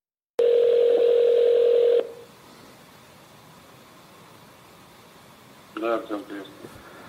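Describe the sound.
A loud, steady telephone ring tone sounds once for about a second and a half as a call is placed to a member of an assassination squad, then gives way to faint line hiss before a voice briefly answers near the end.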